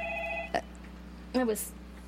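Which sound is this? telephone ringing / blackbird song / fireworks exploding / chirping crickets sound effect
telephone ringing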